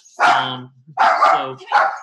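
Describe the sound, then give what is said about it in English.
A dog barks three times in quick succession, loud, with harmonic, slightly strained barks separated by brief pauses. “Sorry about that. We got Shiloh dog.”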